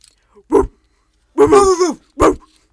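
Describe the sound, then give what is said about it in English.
Someone barks like a dog, loud: a short yap, a longer drawn-out bark that bends in pitch, then another quick bark, with pauses between. “For all the women out there, if a man comes up to you at a bar and he's just being weird, you don't want to talk to him, he's being, like, you know, just bottom line, just... bark.”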